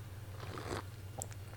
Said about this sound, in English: So hold on one second. I'm taking a sip of coffee.